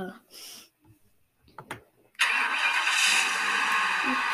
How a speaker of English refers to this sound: Ready? Yeah. Let's start this engine real quick.